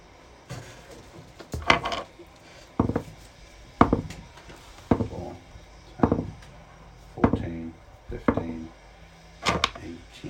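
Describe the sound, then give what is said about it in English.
Silver coins clink and clatter in a drawer, roughly nine sharp metallic bursts about a second apart, each with a short bright ring, with faint voices murmuring underneath. “180 silver pieces.”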